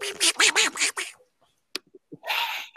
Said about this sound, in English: Now I need a duck sound effect for a duck moment.